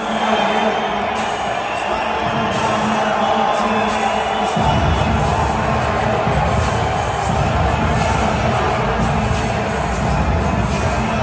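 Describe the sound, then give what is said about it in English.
A huge stadium crowd roars and cheers as the Canada team runs onto the field, a dense, unbroken wall of noise with whoops rising above it; about four seconds in, a heavy low rumble swells underneath and the cheering grows fuller. “Here is the reaction of the crowd when Canada hit the field.”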